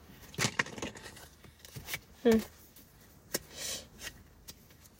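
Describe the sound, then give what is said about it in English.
Tarot cards being shuffled: a scattered series of soft, papery riffles and sharp little slaps, with a brief murmur of a voice partway through. “I'm still shuffling.”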